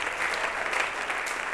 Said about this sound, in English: Can we clap our hands?